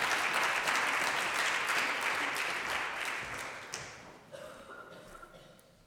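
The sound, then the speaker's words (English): A crowd applauds with steady, dense clapping that holds for a few seconds, then thins out and fades to scattered claps and quiet murmurs. “No applause necessary.”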